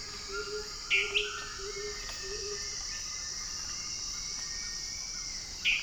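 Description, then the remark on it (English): A dwarf tyrant-manakin singing from somewhere nearby gives a couple of short, bright song notes near the start and again at the end, over a constant shrill insect drone and faint low calls. “On the way back to the trailhead to meet up with my companions, I stumble upon this little jewel, a dwarf tyrant mannequin, giving its sweet little song from somewhere nearby.”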